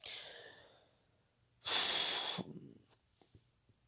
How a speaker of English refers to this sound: I got something in my throat. I was eating some tortilla chips earlier, and I've got a crumb that seems to want to keep hanging around my throat area, and it keeps making me want to cough.